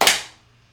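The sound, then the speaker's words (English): A single sharp hand clap made to sync a recording, with a sudden bright attack and a quick decay, heard alone with no voices. “Can we do a quick clap?”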